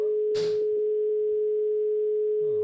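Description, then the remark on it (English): A steady, unbroken telephone dial tone hums throughout, loud, with a short burst of crackly noise near the start as the line is picked up to place a call. “Nana Kat says she's ready, so I'll give her a call now.”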